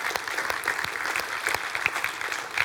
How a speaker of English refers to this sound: And from day one, let me tell you something, our Harvest Kids team has absolutely crushed it. They have just, we can applaud them for their work.